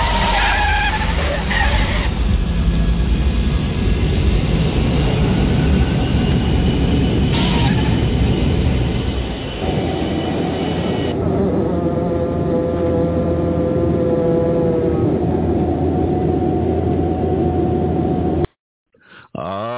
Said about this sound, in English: We got this plane safely on the ground.